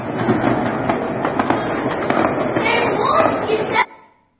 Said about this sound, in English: Gunshots, fireworks, bombs, grenades, all this stuff is going off in celebration. When the election happened, they actually made sure that we were all inside. They said we can't be outside because you could get hit by a bullet falling from the sky.